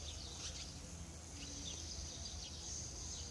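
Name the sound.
birds singing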